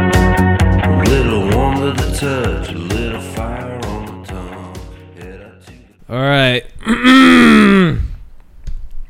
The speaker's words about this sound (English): 'Cause clear my throat when I start this thing, and I think people enjoy it.